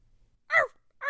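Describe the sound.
A person imitates a dog, giving two short, loud barks about half a second apart, with no other talking around them.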